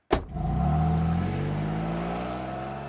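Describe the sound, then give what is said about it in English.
A car pulls up and stops, opening with a sharp knock before a loud, steady engine hum with a droning, slightly rising tone that keeps running to the end. No one speaks. “Ah, they are stopping.”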